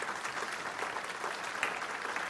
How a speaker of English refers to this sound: Let's clap for those folks who gave their heart to the Lord.